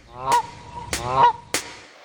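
A goose honks several times in quick, uneven succession, each call loud, harsh and nasal with a brassy, buzzy tone. No voices, just the bird.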